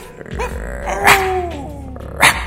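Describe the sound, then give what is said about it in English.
Dogs in a parking lot growl low and steadily, with whining, yelping tones sliding over the top and two sharp, loud barks bursting out about a second apart, with no talking. “Phil, in a parking lot? In front of all these dogs?”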